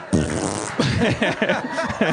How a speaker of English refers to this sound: Fart break.